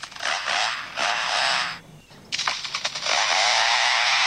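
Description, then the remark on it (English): A lyrebird imitates a chainsaw: a loud, harsh buzzing roar that cuts out briefly, sputters in choppy bursts, then revs back up to a steady whine. No one speaks. “Hand on heart, these are all lyrebirds. This one, this one's extraordinary, chainsaw.”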